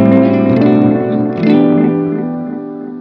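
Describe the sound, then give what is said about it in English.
A loud, sustained guitar tone thick with delay from a delay pedal with its regeneration turned up. The echo repeats smear together and hang in the air, almost at the point of feedback, before slowly fading, with no voices present. “There you almost get that echo, right?”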